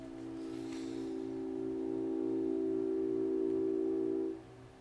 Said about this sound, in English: It's a nice noise. All right, I think the train might have gone.